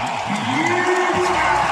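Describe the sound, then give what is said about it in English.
A loud, steady roar of a basketball arena crowd cheering as the Thunder go on a 13-0 run, with a dense wash of shouting and noise and a rising sustained tone cutting through it. “Crowd is rocking.”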